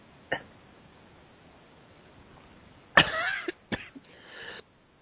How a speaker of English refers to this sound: Oh my God, my cough is getting me good.